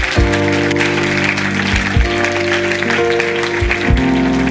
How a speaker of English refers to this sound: Somebody say, in Jesus' name. One more time, put your hands together. Give the Lord a hand clap of praise.